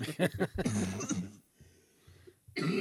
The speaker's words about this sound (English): Well. I still have the cough. And you always will. I very well might just have it forever.